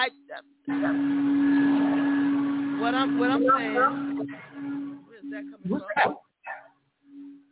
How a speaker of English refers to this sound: What's that? Vacuum. Sure. Sorry. Oh, okay. Sorry. You hear that?